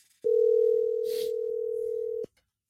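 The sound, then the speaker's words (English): A single steady electronic tone of an outgoing phone call ringing, about two seconds long, clear with no talking, and a faint brief rustle partway through. “I'm calling her.”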